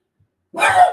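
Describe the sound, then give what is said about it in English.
A female French bulldog, kept as a guard dog, lets out a single short, rough snorting grunt after a moment of silence, fairly loud, with no one talking, indoors in a room. “Hey, Sophie, we're doing a show. She's a really good guard dog, little Frenchie.”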